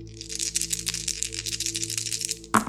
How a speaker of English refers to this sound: This is a crit. It's a lot of dice.